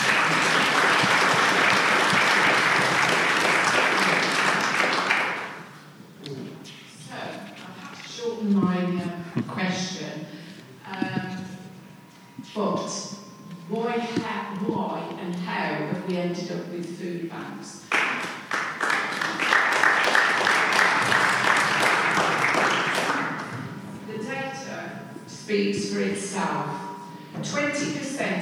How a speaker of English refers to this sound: Of course, this generosity in caring, donating food and people's time also involves the Baptist Church here itself. So another round of applause, please.